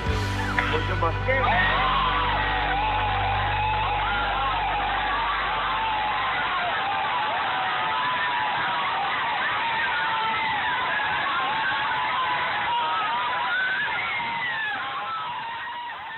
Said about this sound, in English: Probably seen that video 50 times, but those screams at the end get me every time.